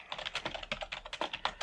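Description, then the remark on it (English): Rapid, uneven keystrokes clatter on a computer keyboard, a steady stream of light, crisp clicks at moderate volume with no one speaking. “So let me try and type that in.”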